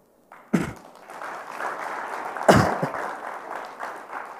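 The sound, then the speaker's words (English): A crowd claps steadily for a few seconds, a dense, even wash of applause broken by two sharp, heavy thumps, one near the start and one midway through. No one speaks. “The real applause-worthy stuff is now.”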